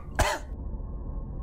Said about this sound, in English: I tried to make a joke, but I found my mouth was too dry to get the words out properly, and I dissolved into a fit of coughing, mid-sentence.